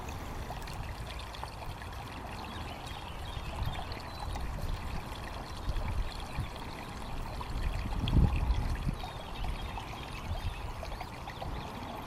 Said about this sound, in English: Or maybe hear a creek gurgling in the distance